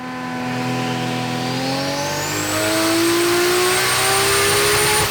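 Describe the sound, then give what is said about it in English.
An R34 car engine on a hub dyno revs hard and steadily, its pitch climbing through the gears over about five seconds, loud and continuous throughout, with no voices. “This R34 video just uploaded.”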